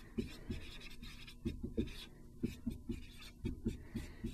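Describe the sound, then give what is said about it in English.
A marker or pen scratches and taps across a writing surface in short, irregular strokes, fairly quiet, with brief pauses between bursts and no talking, as a math teacher writes out a function's domain. “Let me write that.”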